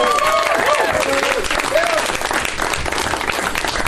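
An audience applauds loudly and steadily for about four seconds, a dense wash of clapping with scattered cheers and whoops rising above it, welcoming a guest onto a stage.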